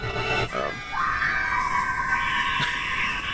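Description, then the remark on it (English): Someone vocally imitates a toothless scream, done gummily: a short guttural lead-in rises into a loud, sustained, raspy screech that holds for a few seconds, with no other talking. “You just have other ideas for that toothless scream.”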